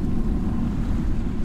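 A steady, rumbling wash of ocean waves fills the space, dense low roar with a hissing top, continuous and fairly loud with no voices present.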